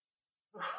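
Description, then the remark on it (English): A single abrupt cough bursts out after a moment of silence, a brief, breathy, rough expulsion with no talking around it, during a Movie Review program recording. “I thought I didn't have to cough, but then I did.”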